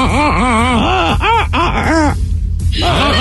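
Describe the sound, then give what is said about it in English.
A person vocally imitates a seagull mating call with a series of loud, wavering, nasal wails that rise and fall in pitch, pausing briefly before a final squawking burst. “That's their mating call.”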